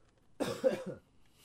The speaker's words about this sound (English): I was like, this is no good. I'm going to cough again.